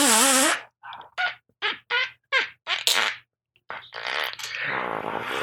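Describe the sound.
Someone tries to blow wet, sputtering fart noises with their mouth: a wavering squeaky blow, a quick string of six short puffs, then a longer buzzy raspberry.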